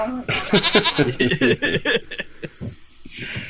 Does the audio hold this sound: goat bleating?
yes